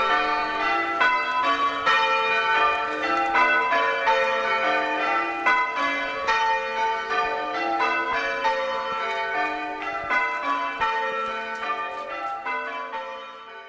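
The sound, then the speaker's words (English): Church bells peal in a dense, continuous cascade of overlapping ringing tones, loud, with strikes tumbling over one another and no voices present. “I love what those bells mean.”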